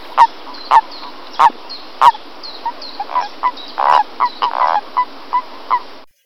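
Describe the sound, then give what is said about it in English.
A toad gives a series of about a dozen short, nasal, honking calls in an irregular rhythm, mid-pitched and fairly loud over a steady hiss, with no talking. “Okay, let's listen to the toad again in the recording.”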